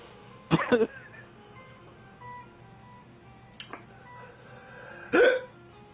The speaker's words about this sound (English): It's giving me hiccups.